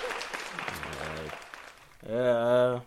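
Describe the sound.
A short round of applause, a dense crackle of many hands clapping for about two seconds, then a loud sustained voice cheers over the end of it.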